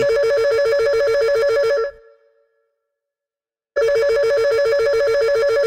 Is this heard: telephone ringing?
yes